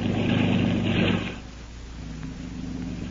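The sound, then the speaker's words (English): A speeding torpedo boat's engine roars loudly for just over a second, then drops back to a lower, steady droning hum with a faint tonal whine. “Not without loss, however, for machine guns of the Jap freighter pierced the waterline of the speeding torpedo boat.”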